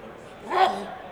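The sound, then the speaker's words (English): A single loud sneeze bursts out midway, a sharp, breathy blast with a voiced edge that swells quickly and then trails off into quiet. “That was one hell of a sneeze.”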